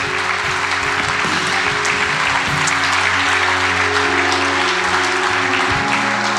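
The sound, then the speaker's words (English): A large church audience claps and applauds steadily and loudly for several seconds as people stand to make decisions for Jesus, a dense wash of hands with no break, over a faint sustained musical drone underneath. “Come on, everybody start applauding and start clapping.”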